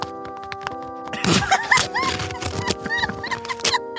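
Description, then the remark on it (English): A paper envelope is ripped apart in a run of loud, crackly tearing bursts lasting a few seconds, with high squeaky chirps scattered through it over a steady low hum. “And he ripped the paper.”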